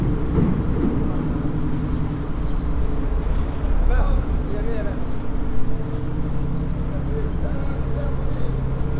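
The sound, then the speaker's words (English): A boat engine drones steadily as the boat starts and slips its moorings early in the morning on the way to Edfu, a deep continuous rumble holding an even level throughout, with a little wind noise and faint indistinct voices in the background. “The boat started, slipped its moorings early.”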